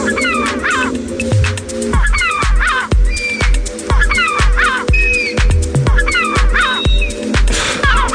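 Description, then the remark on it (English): A seagull deterrent app plays loudly from a phone to keep seagulls away from food: harsh, repeated gull squawks and shrieks in rapid bursts over a low electronic hum, continuing steadily with no talking. “Bye Gull Bye, expertly created to safely deter seagulls from getting too close to your food.”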